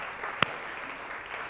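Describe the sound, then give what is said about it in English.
An audience clapping hands as a clap offering to the Lord, a soft, steady wash of many claps with one sharper clap standing out early on; fairly quiet overall and no one speaking. “And why don't we give the Lord a clap offering?”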